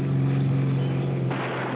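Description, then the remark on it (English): A motorcycle engine revs with a loud, steady low-pitched drone that roughens and brightens briefly toward the end, with no voices over it. “Maybe you'll put on one of those 1960s motorcycle movies. Who knows? Maybe it sounds a little bit like this.”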